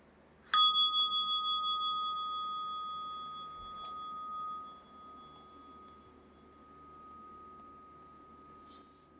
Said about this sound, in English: And now listening for the sound of the bell to open your eyes.